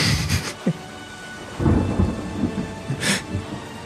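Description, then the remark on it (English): Low rumbling thunder rolls beneath steady rain, with a couple of bright crackling bursts of a lightning strike on the ocean; the rumble swells and fades unevenly, with no voices present. “The lightning struck and the ocean dipped into almost like a shallow bowl.”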